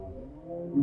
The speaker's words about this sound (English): Oh, you heard a moan too. A bowhead whale.